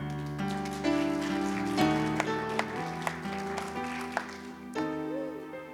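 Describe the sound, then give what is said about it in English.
An audience claps in scattered, uneven bursts over steady, sustained keyboard chords, with sharp individual claps standing out now and then rather than full applause. “Go ahead and clap. We're actually allowed to clap. Somebody clap.”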